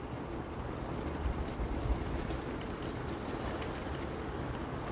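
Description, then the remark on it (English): Heavy rain pours down outside, heard from under the slanted cover of a roof, in a steady, dense hiss with a low rumble beneath, continuous, with no voices or other sounds breaking through. “I just finished my round of deep cleaning and the pouring down rain outside beckoned to me to sit under the slanted cover of the roof and unpack my streams of consciousness.”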